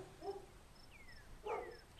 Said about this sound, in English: Until you woke to a sound. You hear barking of a dog.